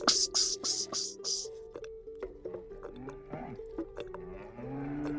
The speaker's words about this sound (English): And afterwards we went out and he milked the cow into a tin bucket.